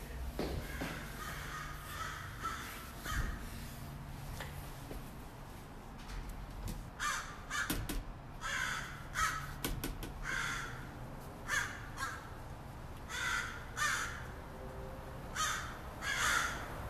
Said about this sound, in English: been a while since I've heard intense crow discussions. Let's go hear what they got to say.